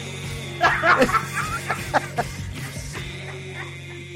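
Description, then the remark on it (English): A dog in a film barks in a quick run of short, sharp yelps over a low steady hum, with what sounds like snickering laughter mixed in before the barking settles. “Give a dog the finger.”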